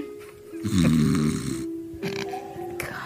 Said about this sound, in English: The snoring. There's still between the noise making of your companions while they sleep. Just the sounds of the forest.